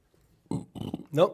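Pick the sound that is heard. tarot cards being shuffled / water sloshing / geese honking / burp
burp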